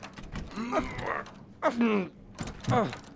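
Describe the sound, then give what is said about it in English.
A stuck, double-reinforced white oak crew cabin door creaks and groans in three strained, drawn-out bursts with short pauses between as it is forced, each pull sliding up and down in pitch, moderately loud. “This door's been sealed, or something on the other side's jamming it. It won't budge.”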